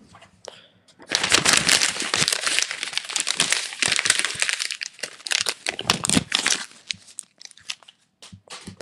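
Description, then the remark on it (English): Paper being crinkled and crumpled, a dense, continuous crackling rustle that starts after a brief quiet moment and continues in bursts, fading slightly toward the end. “Okay, so that was the paper.”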